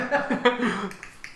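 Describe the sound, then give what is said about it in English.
A person imitates a dolphin with a quick series of sharp tongue clicks over a squeaky, voiced whine. The clicks come at an uneven pace and fade toward the end. “I can't do a dolphin noise.”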